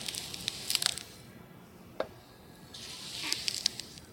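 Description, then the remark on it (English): A knife slowly and smoothly slicing through scallions: two drawn-out passes of soft, crisp crunching and rasping, separated by a single light tap, with no sharp chopping and no talking. “This is a more horizontal, slow, smooth slicing instead of a chopping.”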